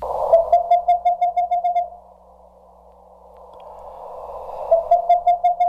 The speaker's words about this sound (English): Then the ping-pong sound of the western screech owl.